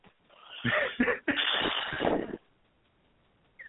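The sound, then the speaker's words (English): A harsh coughing fit: a few rapid, raspy coughs that run together over about two seconds, then quiet. “I have, like, a coughing attack.”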